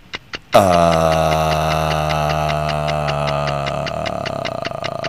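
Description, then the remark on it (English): A steady, rapid clock ticking plays over a sustained droning musical tone, like a game-show countdown timer. Two quick clicks come first, then the regular ticks continue loudly without talk. “Put me on the clock.”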